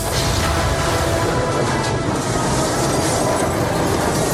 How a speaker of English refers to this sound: Yeah, and he shudders and vibrates, and this train lends out a final choo-choo as it fucking just like peels in half and almost like depressingly, unclimactically, just slows to a stop.